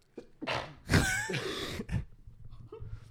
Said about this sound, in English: Little sneeze.